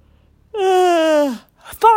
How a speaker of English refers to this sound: 5 yawns. 5 yawns to close it out.